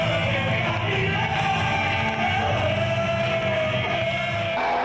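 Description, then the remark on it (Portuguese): A large concert crowd at Pedreira Paulo Leminski cheers and yells continuously as heavy rock bands play, a dense, loud roar of many voices with shouts and whoops rising over a steady wash of noise throughout. “O público vibrou.”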